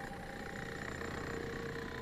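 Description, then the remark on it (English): An engine idles with a steady low rumble and a faint vibrating hum, holding constant and fairly quiet throughout, with no voices, like machinery left running at a work site. “Looks like I'm at some kind of construction site?”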